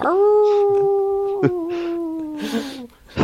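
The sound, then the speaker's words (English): A person imitates a wolf howl at about 1 a.m. on Halloween: one long, loud, steady wail held for nearly three seconds, dipping slightly in pitch before trailing off. “Give us a howl”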